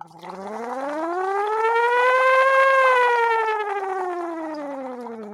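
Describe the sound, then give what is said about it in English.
A single hummed voice glides smoothly upward in pitch and back down over about five seconds, with a steady bubbling flutter running through the tone, phonating through a straw into water as a pitch-glide exercise. “You want to keep the bubbles relatively controlled throughout the entire pitch range.”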